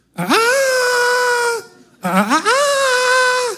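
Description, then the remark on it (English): A volunteer from the audience imitates a rooster crow with two loud, drawn-out vocal cries, each swooping up in pitch and then holding a steady, strained tone before cutting off. “How do roosters crow? Somebody do better rooster than that.”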